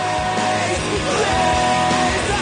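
Several voices scream together in a sustained, loud, harmonized yell, layered over a dense, constant wash of sound for a couple of seconds.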